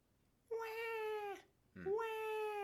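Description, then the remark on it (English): A voice imitates hysterical newborn-like wailing over Harambe's death: two long, loud, strained cries with a steady pitch, the second starting with a rising sob, separated by a short pause. “I was like a newborn child. Wow. You were that hysterical because of Harambe's death.”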